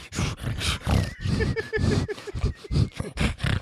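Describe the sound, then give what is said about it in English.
A young girl imitates how a dog sounds, copying the family's pug, Rupert: a rapid, uneven string of about a dozen loud, rough, grunting snorts with brief gaps between them. “Well, in my household, and she does a very accurate impression, a dog sounds like...”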